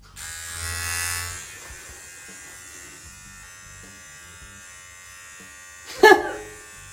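A Manscaped Lawnmower electric body hair trimmer buzzes steadily with a bright, whirring hum that swells at the start and then settles, ending with a short, sharper burst of noise near the end.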